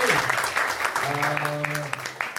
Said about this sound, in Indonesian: Tepuk tangan buat teman-teman semua.